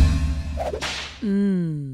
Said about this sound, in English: It's always with that whip. It always freaks me out.